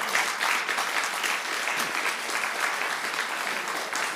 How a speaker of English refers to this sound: And this applause is for God the Father, because I ain't got it, but He does.